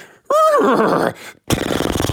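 A horse, one of several stuck in freezing water in Montana, lets out a loud whinny with a wavering, falling pitch, followed after a short pause by a rough, noisy burst like snorting or splashing.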